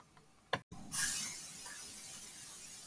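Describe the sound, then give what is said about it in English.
A short click followed by a sustained, bright hiss of canola oil cooking spray being sprayed onto a baking pan for cookies, lasting a couple of seconds, fairly loud, fading slightly toward the end. “Now you're going to get your baking pan for the cookies, and you're going to spray it with canola oil cooking spray, which is what we're using.”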